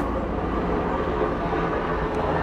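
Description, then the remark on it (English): An airplane flying overhead: a steady, loud, low rumbling roar that holds constant throughout, with no voices or other distinct sounds breaking through. “That's an airplane. That's literally a fucking airplane.”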